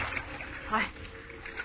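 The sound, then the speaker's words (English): Water sloshes and splashes steadily throughout, with a brief louder surge midway, while a muffled voice seems to murmur underneath. “Coming through the water. After me.”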